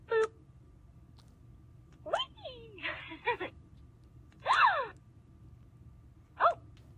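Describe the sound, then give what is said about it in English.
A recalled toy doll's electronic voice, set off by pushing a button on its privates, lets out a series of short, breathy gasps and squeaky vocal bursts, about five in seven seconds, spaced irregularly over a low background hum. “Like a gasping sound.”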